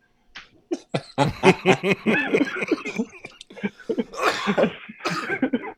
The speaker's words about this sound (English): A lot of coughing and laughing over here today, listeners. Because man, we struggling through this one, but we gonna get through it though.